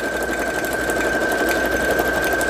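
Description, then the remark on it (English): A sewing machine runs steadily as it stitches, a continuous fast mechanical whir with a constant high whine on top, fairly loud and with no voices. “Why do you think my sewing is exciting?”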